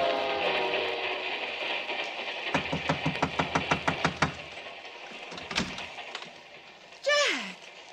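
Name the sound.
train running on rails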